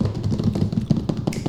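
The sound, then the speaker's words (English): A rapid, continuous drum roll tapped out by hand on a hard surface, a dense flurry of quick, even taps lasting about a second and a half with no voices over it. “Can I get a drum roll, please?”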